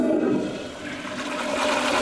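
A toilet flushes with a loud rush of swirling water that fills the whole moment, dipping slightly midway before surging again. No voices are present.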